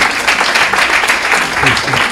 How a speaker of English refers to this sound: All right, let's give her a big round of applause.